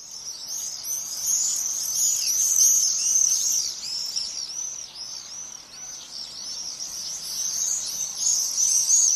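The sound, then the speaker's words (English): A flock of birds screeching and calling overhead in summer, their shrill, high-pitched cries overlapping in a continuous, busy chorus that rises and falls slightly over several seconds, with no voices present. “I love, when I can, hearing them just sort of screeching overhead”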